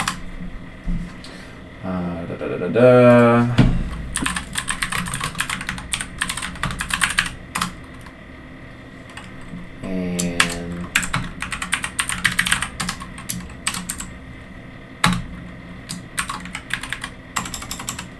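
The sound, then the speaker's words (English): Rapid, uneven clicking of keys on a computer keyboard while typing a message, fairly loud, with bursts of typing and short pauses, plus a couple of brief tonal murmurs in the background. “Okay, I need to edit that. I hit enter before I had finished typing the message.”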